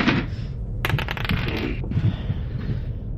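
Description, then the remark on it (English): Dice rolled for initiative clatter and tumble across a hard surface, a quick burst of sharp, bright clicks lasting about a second before settling, over a steady low background rumble. “Roll for initiative.”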